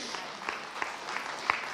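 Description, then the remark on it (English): A sparse, polite golf clap: a handful of soft, evenly spaced claps, about five in under two seconds, over a faint steady background hiss. “Thank you so much for that golf clap, Mom.”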